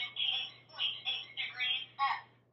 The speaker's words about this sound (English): So once I get it in there, I push a button that says FT, which is fast temperature, and it's going to be beeping. I'm going to let that go for about 10 beeps, and then I'm going to press the talk button.